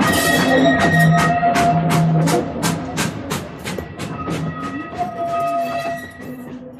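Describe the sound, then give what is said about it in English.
Steady rhythmic clacking of a passenger train setting off along the rails, the beats evenly spaced and fairly loud, with sustained tonal hums layered over them throughout. “Looks like we're off.”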